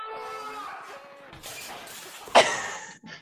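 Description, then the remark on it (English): Muffled voices and hiss play before a sudden, sharp shattering crash whose bright, scattering debris fades over about half a second. It sounds thin, like a video played back. “Yeah, this is the one where he goes out and something like shatters.”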